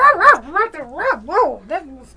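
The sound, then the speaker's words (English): A dog whimpers and yelps in a quick run of rising and falling whines, fairly loud, with short barky accents, lasting about two seconds with no other sounds. “Thomas went bald, and his dog ran away.”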